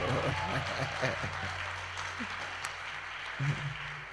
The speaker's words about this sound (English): The way you are clapping, it looks as if you want him to be transferred somewhere. Some people have need of him, in case you don't have need of him. I said they are clapping as if they want you to be transferred.